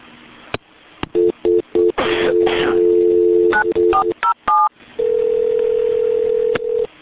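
A phone line with a quick series of keypad dialing beeps and tones, followed by a long steady ringback tone, heard clearly over a faint background hiss.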